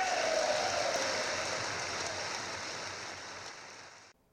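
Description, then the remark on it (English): A large audience in a chamber applauds steadily, a dense wash of clapping holding for about four seconds before tapering slightly and cutting off, with no voices over it. “And you can't clap for women being rescued from a sex trafficking operation?”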